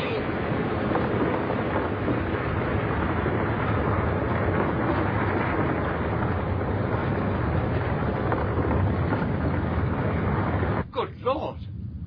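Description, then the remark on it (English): A whole cliff collapsing in a rockfall after much recent rain: a loud, dense, continuous roaring rumble that holds steady for about eleven seconds, then breaks off into a few scattered final bursts. “The whole cliff's coming down.”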